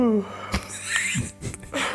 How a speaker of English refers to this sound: It's just yawning. I just typed in yawning video.